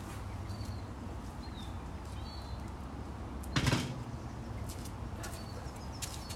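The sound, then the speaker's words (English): A chair that was in the way gets shifted once, a short scraping knock midway, against a steady indoor hum with faint bird chirps. No one speaks. “The chair is kind of in the way. Let me move the chair.”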